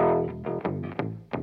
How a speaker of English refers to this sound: Go back to that bass on the whammy pedal.